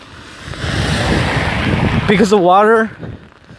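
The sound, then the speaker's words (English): Steady, fairly loud rushing hiss of rain as a person walks in the middle of a road, with water running down the side of the road like a little river; the person's voice briefly speaks over it near the end before the noise fades a little. “Anyway, so yeah, I'm walking in the rain.”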